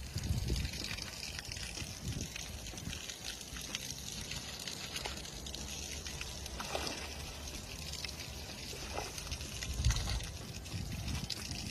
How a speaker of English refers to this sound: But you got here just in time to see a pig play in the mud. I think it's a pig. If I'm wrong about what kind of animal this is, please let me know. I think it's a pig.